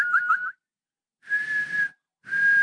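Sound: human whistling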